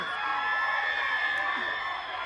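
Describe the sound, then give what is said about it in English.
A large crowd screams and cheers continuously, a dense, sustained roar of many high voices at steady loudness, with scattered whoops rising above the wall of noise. “Tight pussy girl, scream.”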